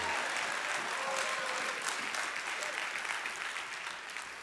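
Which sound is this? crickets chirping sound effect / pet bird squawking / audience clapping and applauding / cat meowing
audience clapping and applauding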